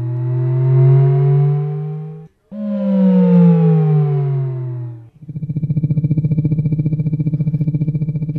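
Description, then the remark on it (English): Synthetic audio cue tones played to car passengers right before the car makes a move, to prevent car sickness: two loud, smooth rising electronic sweeps, each about two seconds long, followed by a steady, rapidly pulsing buzzy tone. No voices. “And playing these sounds, and the sounds are played right before the car makes a move. So it cues you to think about a move coming, and then it worked.”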